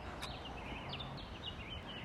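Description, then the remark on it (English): Several birds chirp faintly from tall trees all around, unseen, their short, high tweets scattered across the moment over a steady low outdoor rumble, with no one speaking. “Can you hear that, listeners? Yeah. Birds chirping.”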